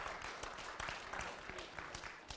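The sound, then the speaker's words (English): A church crowd applauds steadily for seven kids accepting Christ through the Crossroads ministry since January, many hands clapping in a dense, even wash of sound that stays loud throughout with scattered sharper claps standing out. “Since January, we've had 7 kids accept Christ through our ministry at Crossroads, and you can clap for that.”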